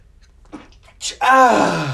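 A single loud sneeze: a quiet breathy intake, a sharp hissing burst, then a strong voiced, drawn-out tail that falls in pitch like a groan.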